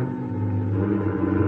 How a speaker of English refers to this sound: Then they must figure they got me because they jump in a car and dig out.